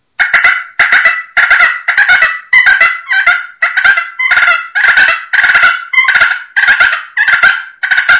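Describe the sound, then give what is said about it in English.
A pot-and-peg turkey call scraped into a loud fighting purr by dragging the peg across the call's surface: a steady run of about a dozen raspy, rolling bursts, each a second or less, with no voices. “You can drag that peg on that surface and make that same kind of fighting purr sound, and I have seen it where it just turns a gobbler, upside down when he hears that.”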